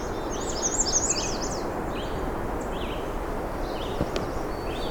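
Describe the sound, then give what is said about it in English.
A black-and-white warbler sings a thin, high, squeaky run of repeated notes in a somewhat open spot with white cedar on both sides, over a steady rushing background, with a few fainter bird calls scattered around it. “It's a black and white warbler.”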